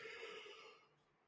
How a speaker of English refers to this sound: Oh shit. I'm yawning and stuff. Like I said, I've been up since 2 a.m. as of this recording.